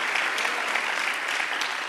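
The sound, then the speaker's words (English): A crowd claps steadily as a hand clap for the leaders of the youth ministry, many hands creating a dense, continuous patter of applause with no pauses and even loudness throughout. “So they took over the youth ministry and have just done such, can we give a Lord a hand clap for these guys?”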